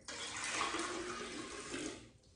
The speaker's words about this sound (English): And now we're gonna simply add about 6 cups of water.